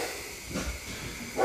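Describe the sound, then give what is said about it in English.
A couple of faint barks from the neighbor's dogs, heard through an open window, one near the middle and a sharper one at the end, sound over a steady background hiss. No one speaks. “That's my neighbor's dogs, ladies and gentlemen.”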